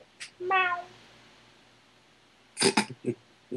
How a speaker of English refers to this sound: You'll hear a cat in the background, pay no attention to it.